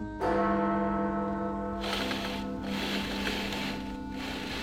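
A single deep clock bell strikes one o'clock in Ebenezer Scrooge's bedchamber and rings on with a long, humming decay, then a soft breathy whooshing noise rises underneath as the tone lingers. No one speaks.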